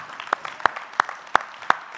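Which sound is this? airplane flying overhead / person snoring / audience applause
audience applause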